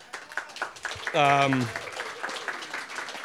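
An audience at a live show gives a round of applause, clapping steadily throughout, a dense crackle of many hands, with a brief high whoop or cheer rising above it early on.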